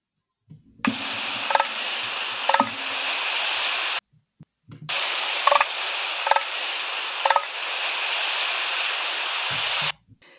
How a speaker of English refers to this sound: So there you go. That was an elephant seal vocalization, the guttural noise that they make